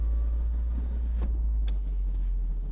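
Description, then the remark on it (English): Inside a car pulling away from a drive-thru window onto a curve at a shopping plaza called The Promenade, a steady low engine rumble fills the cabin, broken by a couple of brief mechanical clicks and a short whir, with no one talking. “No, getting out of here can be scary. Ah, no kidding. Because it's at a curve.”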